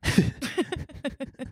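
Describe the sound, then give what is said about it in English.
A single sharp, breathy sneeze bursts out at the start, followed by a few short voiced sounds trailing off in quick, uneven pulses. “Bless you. That was an accident.”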